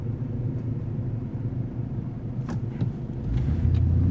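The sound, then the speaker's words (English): A heavy old truck engine, patched up with baling wire and tape, is turned on and rumbles steadily, a deep uneven idle that swells louder and lower near the end as it revs. No one speaks. “And I tried to turn it on, and it started like now.”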